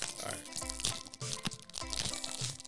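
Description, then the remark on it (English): Crinkling bonbon snack packaging labelled in Arabic crackles loudly and continuously as someone tries to tear it open, with sharp bursts of rustling and a few heavier crunches mixed in, and a low murmur of voices underneath. “How's this crackling for everyone?”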